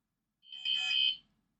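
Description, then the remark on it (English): A mobile phone lets out a single short electronic alert, a bright, high-pitched buzzy tone lasting under a second, swelling quickly and cutting off, with no one talking. “That was Decker's phone. You're supposed to mute that.”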